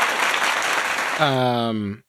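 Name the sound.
clapping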